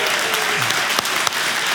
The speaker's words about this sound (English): And since I'm on stage and I just love doing this, can we give my team, the production team, just a big round of applause? Yeah.